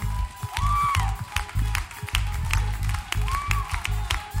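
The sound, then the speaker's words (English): A crowd claps hands in a steady rhythm over loud, booming music, with a rising tone sounding twice. “just clap your hands.”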